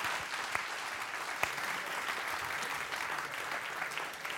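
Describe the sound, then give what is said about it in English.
An audience claps steadily for several seconds, a dense, even patter of applause with a few sharper individual claps standing out, moderately loud, applauding the Smithsonian National Museum of American History and Arizona State University, partners in the What It Means to Be American series. “So a big round of applause for them, please.”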